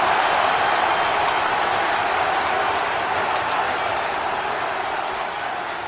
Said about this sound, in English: And the crowd goes crazy and it's just an incredible moment.